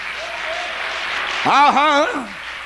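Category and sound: crowd, audience clapping hands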